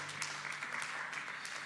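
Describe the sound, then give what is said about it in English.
An audience claps in praise of God, a dense, steady wash of overlapping hand claps that holds an even level throughout, with no voices rising above it. “Give him a hand clap with every level of effort that you can, amen.”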